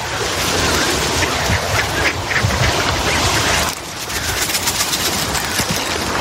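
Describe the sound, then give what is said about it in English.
A crowd of ducks quacks loudly and continuously while being fed, their overlapping calls forming a dense, chattering chorus that briefly softens midway before picking back up. “Feeding the birds.”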